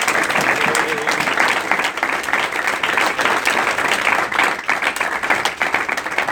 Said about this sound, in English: You know, I don't think clapping is good enough. We should like salute or do something.